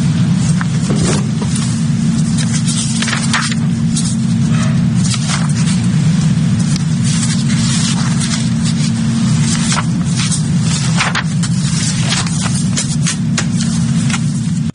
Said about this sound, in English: The paper rustling you're hearing is the judge going over it, double-checking it, making sure it's all in order, making sure he's got everything he needs, all the I's dotted and T's crossed.